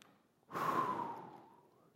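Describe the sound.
A single forceful exhaled breath by a preacher, a breathy whoosh that starts abruptly, then fades out over about a second, like a deliberate sigh of release, illustrating God breathing new life and his Spirit into a person. No one speaks.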